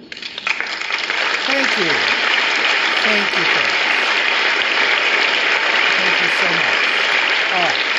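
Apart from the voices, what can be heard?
audience applause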